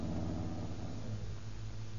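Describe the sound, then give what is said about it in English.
A car engine rumbles low and steady as the vehicle pulls in and settles into an even idle while keeping trucks in sight, with no voices over it. “Here's a good place to pull in.”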